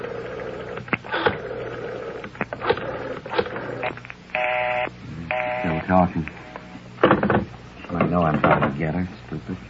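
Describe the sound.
A telephone is dialed, dialing 9 for an outside line: a short run of electronic tones sounds partway through, with people talking around it and a muffled, radio-like quality throughout.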